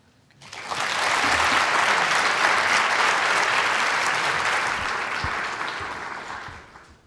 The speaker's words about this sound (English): The place is packed and there's a buzzing anticipation, almost like that of a rock concert. As Butler arrives, a little late, the crowd simmers down and responds with a welcoming applause.